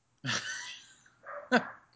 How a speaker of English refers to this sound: So can you hear my dog? Yeah, going nuts. Is it bad? Is it terrible? I mean, I don't care.